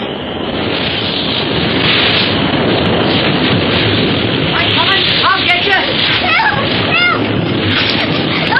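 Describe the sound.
Ocean waves crash in the surf with a loud, steady roar of churning water, continuous. Faint voices rise over the rush partway through.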